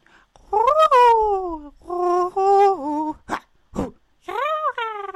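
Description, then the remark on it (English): A person imitates a cat, letting out a string of drawn-out, wavering meows with a couple of short breathy yelps in between, loud with no other talking. “I get like kind of like Primal Cat in the end.”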